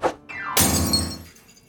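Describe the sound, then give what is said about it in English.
A short knock and a quick falling tone lead into a loud crash as a dropped glass of ham milkshake shatters, its bright, jangling fragments ringing out and fading over about a second. “I dropped the milkshake.”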